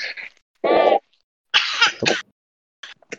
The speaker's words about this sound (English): Oh, excuse me, I need to cough.